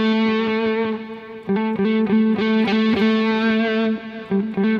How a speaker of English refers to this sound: So I might play a note and then hammer back to that note.